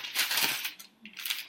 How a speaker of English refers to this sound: Paper noise. Sorry. I hate the paper noise.